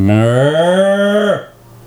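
A single long, loud cow moo, holding a steady low pitch for over a second before dropping off abruptly and trailing into quiet.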